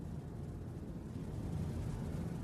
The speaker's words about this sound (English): Sometimes I find it interesting to notice the system just relaxes when sound kind of fades away, like that blower.